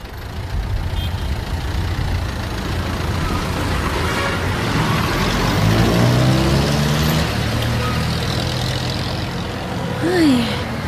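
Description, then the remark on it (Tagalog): A steady, loud engine rumble from a jeepney ride through street traffic on a hot day, with passing vehicle noise, a brief tonal whine in the middle and a short squeal near the end. “Bakit pa kasi ako nag-jeep? Dapat talaga nag-taxi na lang ako.”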